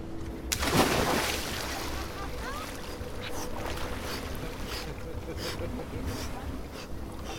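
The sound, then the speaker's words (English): Water splashes loudly as people jump into cold water and out again on a boat outing from Ilulissat, one big burst near the start followed by steady sloshing and smaller splashes, with voices calling out in the background. “We watch consequences for a while, and then some people decide to brave the cold water.”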